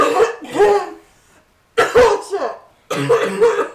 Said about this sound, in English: Maybe I can say popcorn culture in a cough.